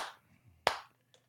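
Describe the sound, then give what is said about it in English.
A single sharp hand clap rings out loudly and fades quickly, framed by a soft brief rustle before it and a faint tap afterward, with no talking. “I gotta applaud you.”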